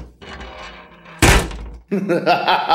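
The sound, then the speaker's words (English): A heavy metal bank vault door slams shut with one loud, booming thud that rings out briefly, trapping people inside. Voices talk just before the impact and right after it. “he shut the vault door on us.”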